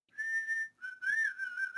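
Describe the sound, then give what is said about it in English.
A young man gives a clear, bright whistle not very far away, in two phrases: first a steady held note, then after a short break a wavering, slightly melodic tone, fairly loud with no one talking. “Suddenly, the little woods girl was horror-stricken to hear a clear whistle not very far away.”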